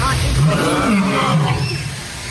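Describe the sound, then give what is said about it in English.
A deep, rumbling, loud lion-like roar, delivered by a human voice imitating the lion that roars at the start of a movie. It swells and wavers for about two seconds before trailing off. “The lions, and a lion starts to roar, and I hit him with a good one.”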